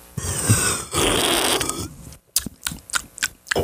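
Someone sips from a can of Red Bull: about two seconds of loud, airy slurping and fizzing, a brief pause, then a quick run of sharp little gulps and clicks.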